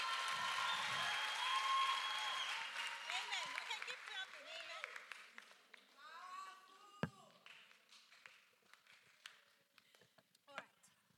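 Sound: audience clapping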